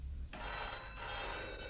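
A telephone bell starts ringing abruptly after a brief quiet moment and keeps up a continuous, bright metallic trill. It's fairly soft, with no voices.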